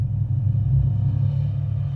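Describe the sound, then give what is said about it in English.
A low, resonant hum drones steadily throughout, swelling slightly in loudness toward the middle and staying strong, with a rumbling engine-like quality and no voices. “There is a hum.”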